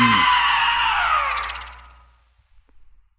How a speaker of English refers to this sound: Now scream!